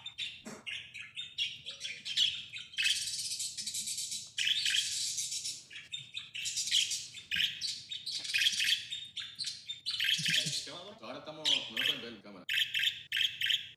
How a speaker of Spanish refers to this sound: Colectando los sonidos al principio, but the birds went crazy. Yo, the birds, they heard themselves and they went wild.